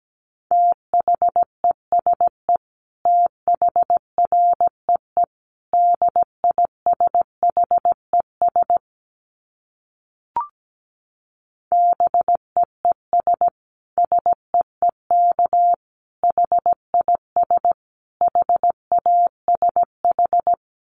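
Morse code practice tones at 17 words per minute: a steady mid-pitched beep keyed into rapid dots and dashes in grouped bursts, with a brief pause and a faint click midway. No voices.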